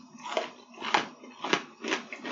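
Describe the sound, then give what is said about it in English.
Someone bites into a frozen caramel cookie, producing four crisp, crunchy snaps in a steady rhythm, loud with no talking. “It is easier to chew. It just snaps.”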